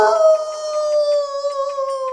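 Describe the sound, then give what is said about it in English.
A dog howls in one long, sustained tone that slowly falls in pitch, loud, with no other sounds around it. “Wolves are known for howling, so it must be... Ooh, a wolf. Nope, it's a dog again. While all dogs can howl, not all do.”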